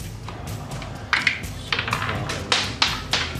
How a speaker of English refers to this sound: Dice flying everywhere.